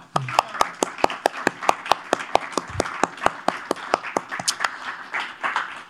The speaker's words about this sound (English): Can we give a hand to our production crew, our volunteers, and also, lastly, our artists? And a round of applause